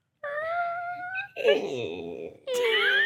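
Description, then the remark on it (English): A voice imitates a squeaky door with three drawn-out creaking tones over about three seconds: a steady whine, a lower gravelly groan, then a higher strained squeal, with no words spoken. “Can someone do a squeaky door?”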